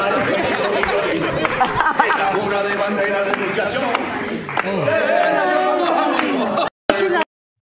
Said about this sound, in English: God damn. That was cringe as fuck. Nobody could be doing the dance if they're all clapping in different units. Nobody was on beat. Nobody was.